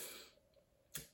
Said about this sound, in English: Ah, just heard some typing. That was pretty cool.